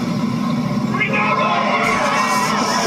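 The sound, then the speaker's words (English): A golf crowd at the Ryder Cup cheers after a huge birdie putt by Mickelson to win the hole, a dense, steady roar of many voices with scattered shouts and whoops rising above it, loud and sustained throughout. “Mickelson trying to light up the crowd again.”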